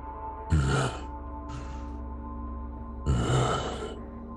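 Heavy, audible breaths as a person tries to calm their breathing down: a loud exhale, a softer breath, then another strong, drawn-out one, over a steady low hum with no talking.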